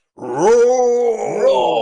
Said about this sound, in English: Roar! Immediately we're roared at by a lion.